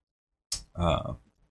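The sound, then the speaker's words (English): A single burp: a short breathy catch, then a throaty, resonant belch lasting about half a second before it trails off. No talking is heard. “As I'm burping.”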